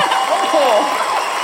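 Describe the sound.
A crowd applauds steadily, a dense wash of clapping that holds at a constant level, with a few cheering voices rising over it.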